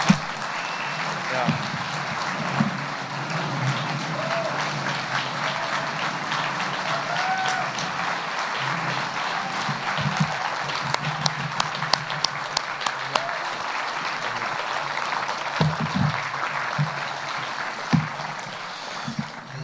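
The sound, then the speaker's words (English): A church audience applauds steadily for about twenty seconds to thank people for their ministry and service, a dense wash of many hands clapping with sharper individual claps popping out, while voices murmur underneath. “Go ahead and thank them. The clap.”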